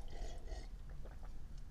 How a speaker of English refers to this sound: Have a little sip and keep going.